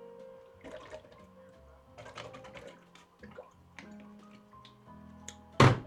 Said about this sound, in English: Man, let me take a sip of water real quick.